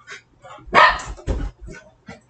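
A dog barks sharply, two loud barks in quick succession with a few softer, shorter yips before and after.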